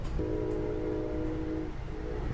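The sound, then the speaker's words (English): A short passenger train of a locomotive, three coach carriages, a cafe car, two sleepers and a baggage car rumbles steadily along the rails, while a long horn blast sounds, fades briefly, then sounds again over the continuous rolling noise. “As I thought, this train is much shorter than the one I was on yesterday.”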